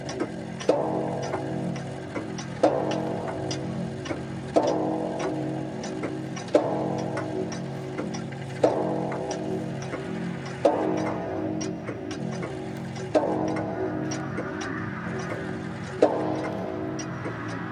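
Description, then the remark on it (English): A clock chimes the hour, striking about nine times at steady two-second intervals, each resonant strike ringing into the next, with faint ticking underneath. Fairly loud, with no voices. “And then, after the lapse of 60 minutes, which embrace 3,600 seconds of time that flies, there came yet another chiming of the clock.”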